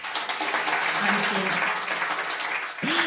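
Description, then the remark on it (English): An audience applauds steadily for a few seconds, clapping to show they have experienced craving, a dense wash of many hands clapping together, fairly loud, with a voice starting to speak as it fades. “So everybody here was clapping their hands.”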